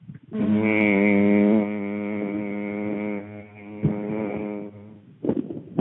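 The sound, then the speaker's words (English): A person hums one long, steady note for about five seconds as the eight-second hum of a breathing exercise, fairly loud, gradually softening before it stops, followed by a brief rustle. “Eight-second hum.”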